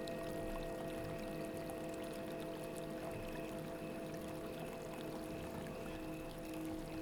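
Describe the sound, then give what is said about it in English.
Soft, steady water gently lapping against a shore, a continuous quiet wash with no voices, set against a faint, even background hum. “You can hear the gentle sounds of the water slowly lapping the shore.”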